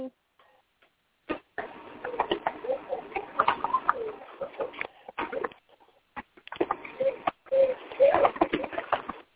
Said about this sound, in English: I hear the baby. I know. Yeah. She's playing with the stuff on front of the refrigerator.